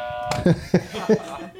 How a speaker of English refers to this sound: I've got a couple of games lined up, and as you can see, you all have buzzers in front of you. Do you want to test your buzzers?